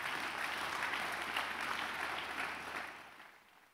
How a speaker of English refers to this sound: You're clapping and singing right now.